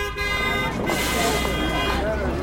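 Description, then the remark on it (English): Car horns blare in a sustained honk over a dense wash of New York City street traffic noise, with indistinct people yelling in the mix. “You hear the cars honking and the people yelling.”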